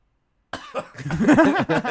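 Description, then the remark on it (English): After a moment of silence, a loud cough bursts out, followed by a rough, voiced throaty stretch of further coughing lasting over a second. “See how long you can go without coughing.”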